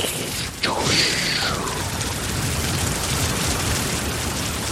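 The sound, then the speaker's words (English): Heavy rain pours in a steady, dense hiss, with a sudden rumbling thunder-like swell near the start that settles back into the constant downpour. “And the rain comes raining.”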